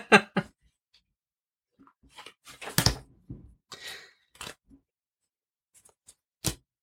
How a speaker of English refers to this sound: This is like some ASMR right now. People just listening to cards shuffling all over the place.